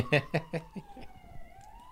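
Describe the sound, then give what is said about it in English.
A police siren wails, its steady tone sliding slowly downward, while a voice speaks briefly over the first part before the siren continues alone. “What is going on out there? It's police sirens.”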